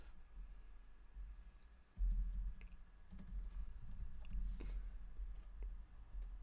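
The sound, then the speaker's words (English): Irregular bursts of computer keyboard typing during a live Google search, quiet, with quick clicky keystrokes over a steady low hum and no voices. “I'm going to mute myself so you can't hear me typing.”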